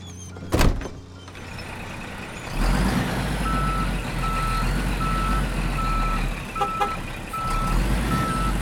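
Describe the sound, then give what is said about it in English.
A heavy truck rumbles while its reverse warning beeper sounds in a steady run of high, repeated tones, after a sharp hiss or clunk near the start. “This is darting, lifting, and then moving by truck an enormous animal.”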